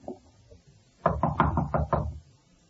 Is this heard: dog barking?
no